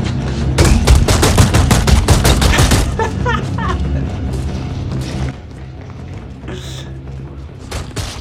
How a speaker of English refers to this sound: Homeboy is, like, at Mach 5 slamming this chick's face into the ground. Yeah, and the thing is you can hear it in the background